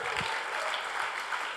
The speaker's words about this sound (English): Come on, let's give that man a round of applause.